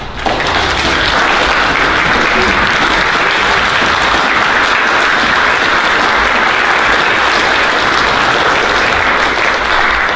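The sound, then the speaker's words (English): Sustained, loud applause from a large standing audience at a worship service fills the whole stretch, a dense steady wash of clapping with no pauses, as if a crowd is giving a standing ovation. “can we stand and give Jeannie Shivers a round of applause”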